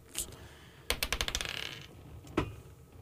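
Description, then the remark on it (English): Dice tumble onto a hard surface during a party game, clattering in a quick run of bounces that speed up and settle, with a single sharp click before and another after, the yellow die landing on six; no one speaks. “Number six. The yellow dice.”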